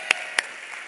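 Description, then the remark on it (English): Two sharp, isolated hand claps ring out about a quarter second apart, followed by a fainter third, scattered and unsynchronized like a few audience members clapping to encourage a preacher. “Some of you are too cool to clap, but you're encouraging me.”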